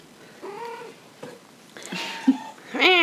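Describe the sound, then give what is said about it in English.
Several meows and yowls from a cat named Alice, fairly loud, arriving in irregular bursts with short gaps and ending in a sharper, louder cry. “Well, Amber's cat Alice was trying to attack me.”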